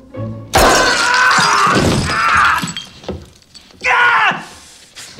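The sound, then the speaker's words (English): Glass Christmas ornaments crunch and shatter in loud bursts as a boy steps on them and walks through the broken glass, with a second sharp breaking burst near the end and a pained vocal groan mixed in. “The other thing that always creeped me out is the him walking on the ornaments, the broken glass.”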